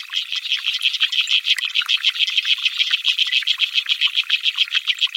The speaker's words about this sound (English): But taking into account their size and scale, water boatmen are indeed among the loudest creatures on Earth.